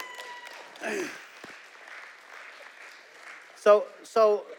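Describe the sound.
An audience applauds, giving the Lord a hand clap, with steady hand clapping, a dense wash of claps, and near the end two short voiced shouts rise above it.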